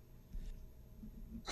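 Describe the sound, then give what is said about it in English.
A single abrupt sneeze bursts out at the very end, sharp and breathy, after a stretch of quiet low background murmur with no talking. “Bless you. Thank you.”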